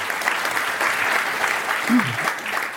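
crowd, audience applause

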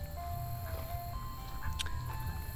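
vehicle, ice cream truck jingle

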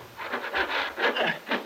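tool, hand saw cutting wood

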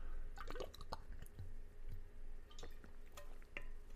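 food or drink, drinking water

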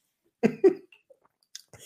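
human body sound, coughing

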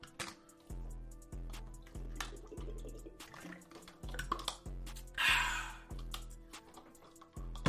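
food or drink, drinking water

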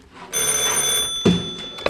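household object, telephone ringing

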